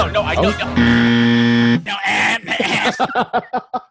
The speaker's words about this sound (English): And I was here with the buzzer if you tried to pull that shit again, sir.